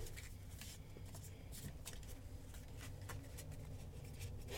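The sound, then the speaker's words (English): Stiff, thick new playing cards being shuffled, with a continuous flurry of papery riffling and flicking, steady and moderately loud, and no talking. “These are really hard to shuffle out, guys, okay? They're pretty thick. And they're new, so they're sticky.”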